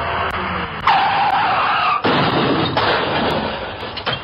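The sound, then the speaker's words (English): Car tires screech in a loud, sustained squeal over roaring noise, then a heavy crash hits, followed by a second crunching impact and rattling debris. No voices. “Most car accident victims worry more about the damage to their vehicles than they do their own bodies until it's too late.”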